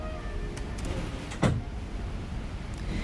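The wooden door of a tiny hut, held shut with a rock, knocks sharply once in its frame amid a few faint rattles as wild gusting wind blows against it, with a steady hiss of wind; no one speaks.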